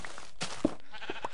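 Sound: sheep bleating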